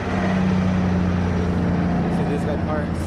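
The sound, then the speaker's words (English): A steady, deep rumble of idling truck engines fills a truck stop in Fresno, California, droning continuously at an even loudness, with indistinct voices faintly in the background. “At a truck stop in Fresno, California, Idle Air employee Courtney Bowman shifts her weight from foot to foot to keep warm”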